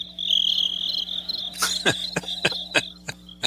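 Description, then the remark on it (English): Crickets chirp in a steady, high-pitched trill, and partway through a series of sharper, evenly spaced chirps joins in. No one speaks, just the quiet insect chorus. “Crickets.”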